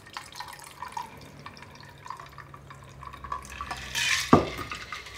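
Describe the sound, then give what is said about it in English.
A cocktail being poured into glasses holding a couple of ice cubes: a soft, steady trickle of liquid with small drips, then a louder splash and a sharp clink of glass near the end, with no talking. “Pouring out the cocktail.”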